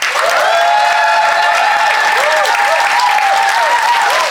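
An audience at the Phoenix claps loudly and steadily for a few seconds to vote for one side of a debate, a dense wash of many hands with faint cheers and whoops rising and falling over it.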